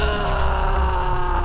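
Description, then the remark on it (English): A single drawn-out scream from a back room, loud and steady for about a second and a half, with a groaning, wailing tone and no talking over it. “And just as you're reading through that, you suddenly hear a scream from the back room.”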